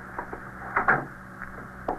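A door is pushed shut with a dull thud and a rattle of the latch, framed by a few softer clicks and knocks, with no one speaking.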